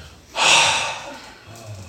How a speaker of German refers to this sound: Komm, wir atmen mal durch.